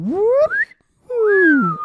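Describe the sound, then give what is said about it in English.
A voice imitates a slide whistle: one loud tone glides steadily upward, breaks off, then after a short pause a second tone slides back down in pitch. “He makes a slide whistle sound.”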